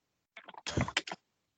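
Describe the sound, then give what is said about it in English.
A quick flurry of loud computer keyboard typing: a few rapid clacking keystrokes, then a dense burst of keys and two final taps, lasting about a second with no voices. “Who's typing? Why are you typing so loudly?”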